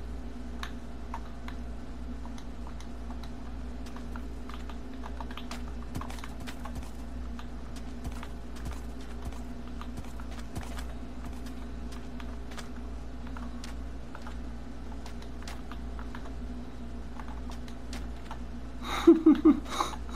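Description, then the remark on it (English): Video game horses clip-clopping as they push against the player, in a steady, irregular patter of light hoof taps over a constant low hum, with a brief louder flurry near the end. “These are annoying horses.”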